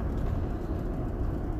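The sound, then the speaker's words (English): A steady, low rumble of a car rolling along a highway, fairly loud, holding an even level throughout with no talking. “We got cars coming and going, but along the highway, those are my cyclists.”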